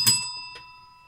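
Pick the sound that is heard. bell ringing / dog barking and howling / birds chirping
bell ringing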